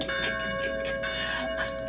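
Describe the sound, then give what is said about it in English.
Church bells played from a phone app ring steadily, with a sustained, shimmering tone and overlapping metallic strikes that blend into a continuous chime. No one speaks over them. “Are those church bells?”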